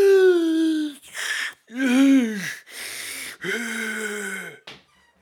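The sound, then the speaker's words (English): A man's voice imitates gasping for breath like the 1980s movie move of pulling off a vest after shots to the chest: a series of four or five loud, strained, wheezing gasps, alternating raspy voiced groans with harsh breathy inhales. “The old fucking 80s pull off the vest, can't breathe move.”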